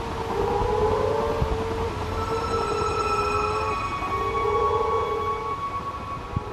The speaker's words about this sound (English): You can find them on Twitter with the most excellent moaning frog recording from southwest West Australia. I really want to hear these frogs for myself, but this recording is the next best thing.